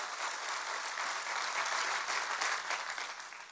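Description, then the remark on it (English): A church audience claps steadily for several seconds for the year-end legacy offering, a dense, even wash of many hands with no pauses, easing slightly at the end. No talking can be made out. “I think we can clap for that.”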